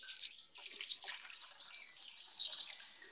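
Potatoes sizzle in less than an inch of frying oil in a pan, a steady bright hiss with a fine crackling texture that holds at an even, moderate level throughout, with no voices.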